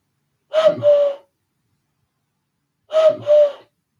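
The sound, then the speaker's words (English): A human voice imitates a cuckoo, giving two clear two-note 'cuck-oo' calls separated by a pause of about two seconds. The hooted notes are mid-pitched and fairly loud, with no other sound around them. “Oh, cuckoo. Yeah, cuckoo.”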